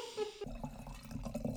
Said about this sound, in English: That is literally the best noise in the world, I have to say. The pouring of a wine glass.